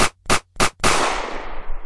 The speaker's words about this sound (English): I mean, if I just had a bunch of different gunshot sounds.